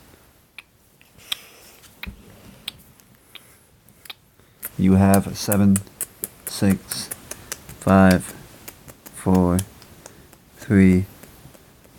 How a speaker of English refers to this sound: You know what? The clock is ticking.